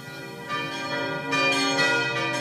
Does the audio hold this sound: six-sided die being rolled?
no